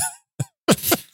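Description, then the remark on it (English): A few short, harsh bursts from a single person, fairly loud: one brief hack followed by a rougher, longer fit of coughing, with no talking. “The question is, did that stop the coughing?”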